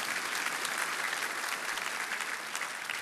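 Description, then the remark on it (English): A church audience applauds for mothers, a dense, even patter of many hands clapping at once that stays at a constant loudness throughout, with no voices rising above it. “Yeah, you can clap for mom.”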